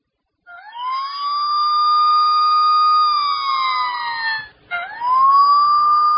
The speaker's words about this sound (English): Okay. Do them all. Here we go. This is siren one.